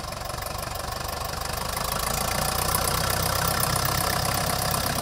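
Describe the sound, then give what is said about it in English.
A 1955 Case 400 diesel tractor engine idles steadily in Kansas, its low, knocking rumble growing slightly louder and more insistent over a few seconds, with no voices. “This is a 400 case, 1955, 400 case diesel.”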